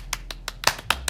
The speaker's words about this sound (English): Do some like fake clapping.